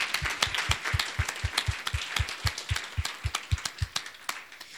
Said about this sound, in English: Please give her a round of applause again.